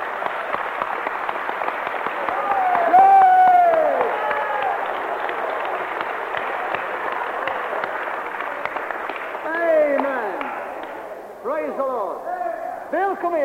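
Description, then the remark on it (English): A church audience at a praise and healing service claps steadily and densely for several seconds, giving Jesus a clap, with voices calling out and cheering over the applause before it fades into shouting near the end. “All those who are feeling better, give Jesus a clap.”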